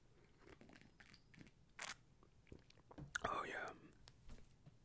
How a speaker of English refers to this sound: Quick sip of tea, boss. Don't mind me, boss.